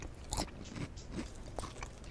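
Someone crunches on chips, with four or five sharp, crackly bites and chews spaced irregularly over a couple of seconds, fairly quiet and with no talking.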